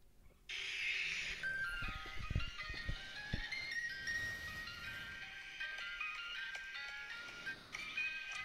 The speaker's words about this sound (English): You heard the ice cream truck, right?